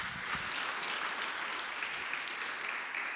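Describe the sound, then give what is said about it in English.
An audience claps steadily for about three seconds, a dense, even patter of many hands at moderate loudness with no voices over it. “Clap for this.”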